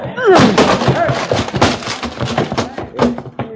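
An office door being busted down because the office is on fire: a rapid series of heavy crashing thuds and splintering impacts, loud, with excited voices shouting underneath.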